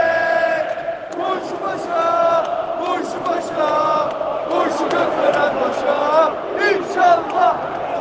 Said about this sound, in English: And with that said, I'll get into it and cue the stadium sound.